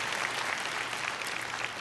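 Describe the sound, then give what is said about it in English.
An audience applauds as a clap offering to the Lord, many hands clapping together in a dense, steady patter that stays at an even, fairly loud level for the whole stretch, with no voices standing out. “Put your hands together. Give the Lord a clap offering.”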